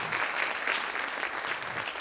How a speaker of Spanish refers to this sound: Dile amén y gracias y dale un aplauso o algo. Es cierto.